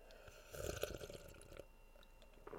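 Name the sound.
sipping tea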